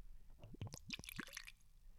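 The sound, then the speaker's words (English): Whisky glugs and splashes as it's poured into a glass, a short burst of bubbly, rising gurgles, fairly quiet, with no one talking. “Do you want to get the pour?”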